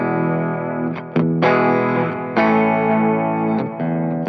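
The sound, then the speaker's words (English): An electric guitar played through an analog King of Tone pedal set for mild overdrive plays a few ringing, sustained chords, each struck firmly and left to ring with a slightly gritty edge. It is fairly loud and has no talking over it. “Then into the analog, man, King of Tone, which I have set for kind of a mild distortion. Mild overdrive, if you will.”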